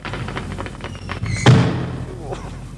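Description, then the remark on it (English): A single heavy thud as a thrown microphone lands hard, a sharp impact that rings out briefly amid faint background voices and rustling. “You're not supposed to throw them over your shoulder if you've tried them.”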